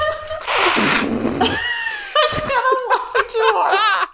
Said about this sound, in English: shit, let me blow my nose really fast. Sorry. Oh, I want to do it too. Should we all do it? Yeah.